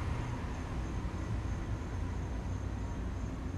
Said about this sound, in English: A bus just went by, an actual New Jersey Transit bus.